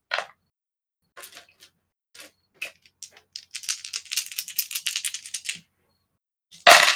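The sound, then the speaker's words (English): A handful of dice clatter onto a hard surface in a rapid burst of small clicks and rattles, with a few scattered taps before and a louder knock at the end. Fairly crisp. “That's a lot of dice.”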